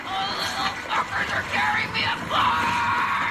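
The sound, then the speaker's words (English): A woman in a film clip yells loudly and angrily, her strained, raspy voice rising in several sustained bursts over about three seconds, dominant with faint background noise. “And then she yells, can we play clip number 5?”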